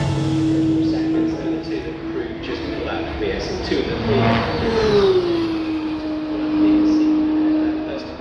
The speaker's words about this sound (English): It's very loud here. Cars are far too fast. They should slow down. Slow down!